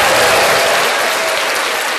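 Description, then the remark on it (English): A round of applause from a crowd at a protest: dense, steady clapping that stays loud and even for the full two seconds, with no voices standing out. “to the woke. Round of applause.”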